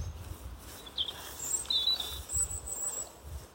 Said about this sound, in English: The whistling you also might be able to hear is a red kite, I think.